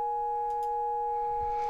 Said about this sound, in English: So both A and B, A is coming out of the left channel and B is coming out of the right channel. Both of them are sine waves.